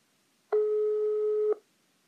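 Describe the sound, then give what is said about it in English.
A single steady telephone tone sounds for about a second, a clean electronic beep with harmonics, starting and stopping abruptly, as a regular phone call connects. No voices are present. “So this is the point where technology failed us and we gave up recording on the Anchor app and just decided to go with a regular phone call.”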